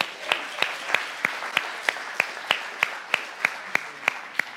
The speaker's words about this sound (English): Let's clap that out.